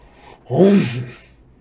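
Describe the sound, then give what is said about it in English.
A single sneeze acted out by a voice for the character Tyson, a cyclops, fairly loud: a sudden voiced burst followed by a breathy, hissing release that fades within a second, with no talking around it. “Tyson protested, but then he sneezed.”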